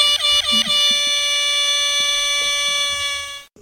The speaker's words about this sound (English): See, now this is where an air horn could go. Just wham, wham, wham, wham.